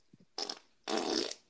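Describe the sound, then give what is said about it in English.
A fart rips out in two loud bursts, a short blast followed by a longer, sustained sputtering one, with a faint low sound just before. “Was that a legit fart? That was a legit fart.”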